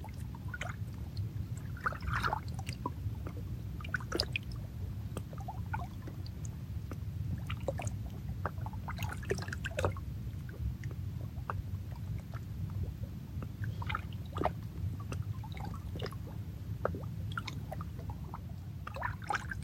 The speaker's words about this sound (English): Moving, shape-shifting. The rock receives. Being subtly changed with every lap of water. In this moment.